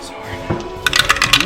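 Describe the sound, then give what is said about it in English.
Dice clatter across a hard surface in a quick burst of bright, sharp clicks and rattles, tumbling several times before settling, with a soft murmur of voices underneath. The dice are rolled for damage after a magic lightning javelin throw hits. “Roll the damage.”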